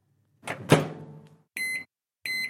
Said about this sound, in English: Thank goodness for the trusty microwave oven, the saviour of leftover takeaways.